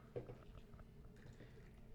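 Beer pours into a small shot glass, a quiet wet gurgle and fizz running for a couple of seconds after a soft clink at the start, the first shot of a drinking game of 100 beer shots in 100 minutes, with no one speaking.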